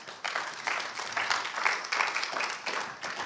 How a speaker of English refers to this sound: Thanks, musos. Let's give them a clap. They do such a great job.